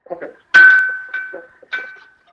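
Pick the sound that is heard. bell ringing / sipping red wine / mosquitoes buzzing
bell ringing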